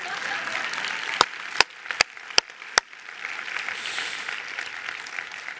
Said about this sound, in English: Now we can clap.